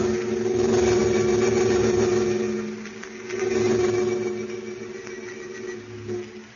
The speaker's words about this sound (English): High above a dark layer of storm clouds, a converted army bomber streaks in the direction of the American border.